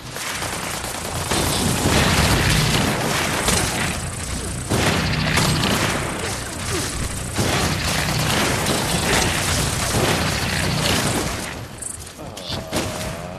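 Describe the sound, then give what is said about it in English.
Loud, dense gunfire from the video game Fallout 76, shooting at a vengeful Mothman, with rapid bursts and heavy booms and weird insectoid hissing. It rattles almost continuously for over ten seconds, then thins out into scattered shots and a fading rumble at the end. “Lots of shooting going on at this vengeful Mothman from Fallout 76.”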